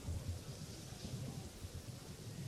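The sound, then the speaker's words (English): Steady rain hisses in a soft, continuous wash, with low rumbling underneath like thunder. The sound is fairly faint and nobody speaks. “We're going to play a little soul music so the rain will stop.”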